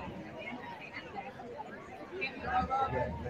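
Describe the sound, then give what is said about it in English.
A large crowd waiting for a big reveal murmurs in a steady, dense babble of overlapping voices, with no single speaker standing out; the chatter swells a little louder toward the end. “The crowd is big. Ready to go. Hear them”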